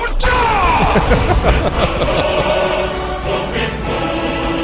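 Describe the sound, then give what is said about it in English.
A Dragonborn shout from the video game The Elder Scrolls V: Skyrim: a sudden loud burst with a falling, voice-like tone riding over a roaring, rumbling wash that holds for several seconds before easing off. “Everyone is familiar with the Dragonborn shouts.”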